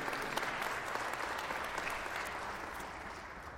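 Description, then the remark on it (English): A church audience claps steadily for a group of people, a dense wash of many hands applauding at once that holds fairly loud throughout and fades slightly toward the end. “So let's give these guys a round of applause right now, and guys and girls.”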